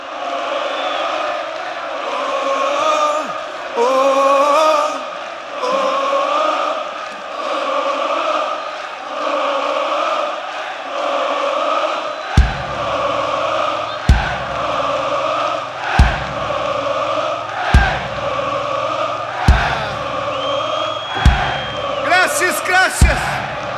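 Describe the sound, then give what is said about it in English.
A huge concert crowd sings and chants loudly in unison with whoops and cheers, keeping it up during only the second song of the show; midway, heavy rhythmic thumps join in, landing about every two seconds beneath the singing. “Not bury the lead, because the crowd doesn't stop.”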